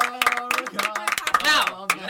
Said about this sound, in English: Clap it up for Irene becoming an American citizen.